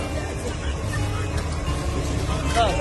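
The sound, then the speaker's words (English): Steady, heavy engine rumble from cement trucks in a played video, a constant low drone with traffic noise throughout, while indistinct voices murmur faintly in the background. “See cement trucks out.”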